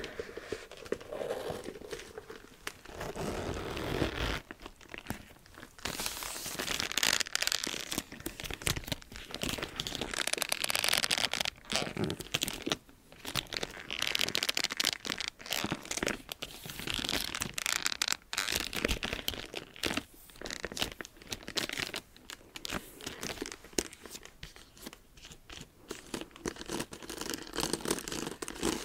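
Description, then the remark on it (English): Continuous rustling and crinkling as a statement bag is handled and zipped up, with irregular scraping bursts that go on for about half a minute and no voices. “Go ahead and zip it up.”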